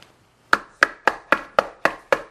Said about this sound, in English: He knocks, right? And the door what? It opens. And he enters in and the door shuts.